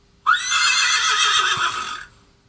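A single loud horse whinny lasting about two seconds: a sharp rising start, then a shrill, quavering neigh that fades out. No one speaks.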